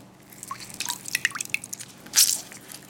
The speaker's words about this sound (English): So we're just gonna cut some. We're gonna cut some key lime. Just gonna squeeze a lime.